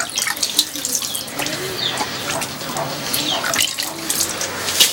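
Hand-washing water runs steadily from a tap and splashes into the special drain of an EcoSan toilet, a continuous trickling with gurgling bursts and no voices.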